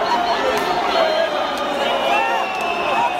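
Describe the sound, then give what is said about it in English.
Tens of thousands of people celebrating in the streets of Zimbabwe in 2017, cheering soldiers after the military takeover: a dense, steady roar of many overlapping voices, with scattered shouts and calls rising above the din for the full three seconds. “And so when the military took over in Zimbabwe in 2017, there was tens of thousands of people on the streets celebrating, cheering the soldiers.”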